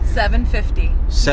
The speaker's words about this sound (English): We're driving through some farmland. Right now, it's a very pleasant drive before we die. And it's about dusk right now, evening, so it's getting dark, so it's going to be extra spooky.